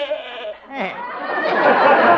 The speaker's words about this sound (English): And then there's Arthur, my goat.